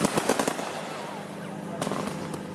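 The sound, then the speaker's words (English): A quick volley of sharp fireworks bangs crackles at the start, fades into a noisy rumble, then a few more pops burst out near the end, fairly loud. “When I meet the things I fear, I get terrified. Like fireworks.”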